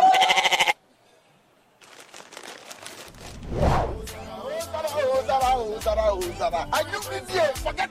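A loud bleat from a goat bursts out at the start, then a short silence gives way to a busy musical backing with rising tones.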